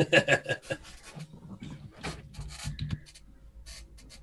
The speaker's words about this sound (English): Don't mind my roll. Okay. That's just Death Edge's personal dice I'm going to put in my pool here.